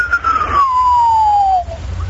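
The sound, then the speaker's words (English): A radio whistler, a whistler mode made by electrons moving along Earth's magnetic field lines: one pure whistling tone that glides steadily downward in pitch for about a second and a half, over a low rumbling hiss of static. “And so what you can hear when you're listening to a radio, you'll often hear what are called whistler modes. It'll sound like someone whistling, but with a pitch changing.”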